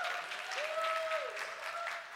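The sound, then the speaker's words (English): A crowd applauds steadily throughout as the Echo J High group is dismissed, a dense wash of clapping with a thin sustained tone rising briefly above it partway through. “Give them a great big round of applause.”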